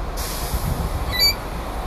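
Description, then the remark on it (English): A single short, high-pitched squawk from pet birds cuts through a steady background hiss about midway, with no one talking. “Do you want to be on my hand? I'll let you be here, but you have to stop squawking.”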